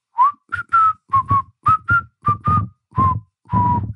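A person whistles a quick series of about a dozen short, clear notes, mostly in pairs, ending with two longer held tones; close and moderately loud, with no talking.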